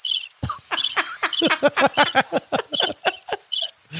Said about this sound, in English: Here, let me do that a little bit louder. We got crickets.